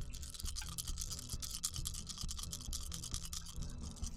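Lots of dice clatter and rattle across a table at once as several players roll for a constitution saving throw, a dense, continuous stream of sharp little clicks that never settles, with no voices over it.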